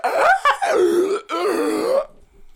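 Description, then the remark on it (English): During a role-playing game, a person voices the screech of a creature as an arrow sinks into its back: two loud, raspy, strained bursts lasting about two seconds together, the first wavering and dropping in pitch, the second held longer and gravelly. “The arrow sinks into its back, and it kind of screeches like...”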